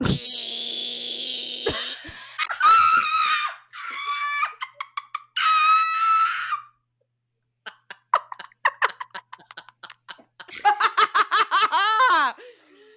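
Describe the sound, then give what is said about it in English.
A person mimics cicadas as heard in summer in Texas with their voice: a long raspy drone, then bursts of buzzing, runs of rapid dry clicks, and a final rattling, rising trill, all fairly loud and unaccompanied. “It's those things that, like, especially, like, oh, okay. Summer in Texas, they just go...”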